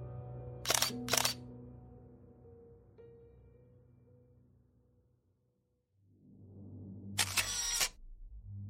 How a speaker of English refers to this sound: His eyes grew wide, a smile crossed his face, and the fevered sounds of a camera shutter clicking echoed down the hallway.